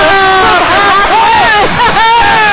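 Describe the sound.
A loud, steady roar of a cheering crowd fills the whole stretch, with an excited voice shouting over the din, as the crowd reacts to a buzzer-beater shot from halfway at the first break.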